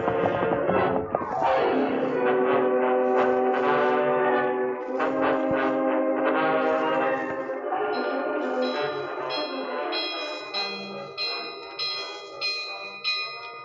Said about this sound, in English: While Ruth went toward the barn, Maggie frantically pulled the cord that rang the big bell near the back door of the ranch house. Oh, please the Lord, that'll bring help.